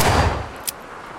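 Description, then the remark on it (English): A gunshot booms and rolls away over about half a second, followed by a brief, fainter crack, a delayed echo off distant hills. No one speaks. “Is that gunfire echoing?”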